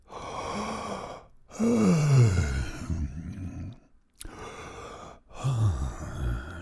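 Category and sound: human body sound, person yawning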